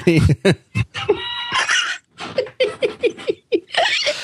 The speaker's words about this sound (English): so you're saying that's the ringtone you've assigned to me now. Well, for phone calls, I got a different one for text.